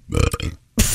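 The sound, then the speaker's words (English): A real cow lets out a long, low, gurgling belch, followed by a short pause and then a louder, rougher burst of air, with no talking. “That was audio of an actual cow burp.”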